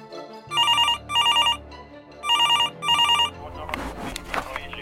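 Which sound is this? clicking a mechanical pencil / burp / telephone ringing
telephone ringing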